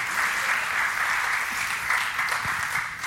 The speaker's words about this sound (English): You guys can clap. It's all right. Yeah.